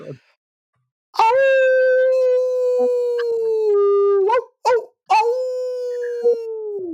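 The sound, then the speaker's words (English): A wolf howls twice in long, drawn-out, steady tones, loud, with a few short yelping breaks between the howls and no talking over them. “It was the sound of a wolf, yes.”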